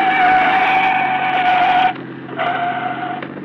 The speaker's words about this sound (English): Man, he's really stepping on it. That's okay, Johnny. It's a police car.